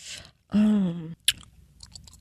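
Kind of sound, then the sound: human body sound, loud gum chewing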